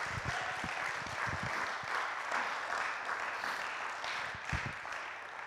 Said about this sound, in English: So let's give him another hand and a clap before we start.